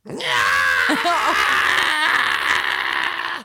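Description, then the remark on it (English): A man lets out a loud, strained, angry scream that lasts about three seconds, rising and wavering in pitch before cutting off abruptly, with no other talking. “He's not happy. He screamed.”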